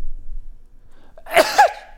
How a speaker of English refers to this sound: Oh, hold on. I'm gonna sneeze. Oh.